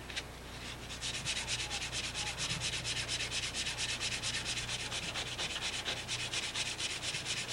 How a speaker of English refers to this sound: Yes, look at that fine craftsmanship sanding procedure. Yeah, it takes forever, too. It's a good way to take out your frustrations.